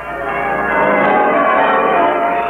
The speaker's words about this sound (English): A bright, shining morning, and the bells of the town pealing out there beyond his window.